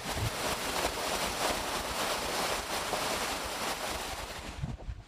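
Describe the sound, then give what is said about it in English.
Steady rain, heard through an open window, falls in a dense, even hiss with a faint pattering texture, holding constant for the whole stretch. No voices, just the continuous wash of rainfall. “ASMR. Rain.”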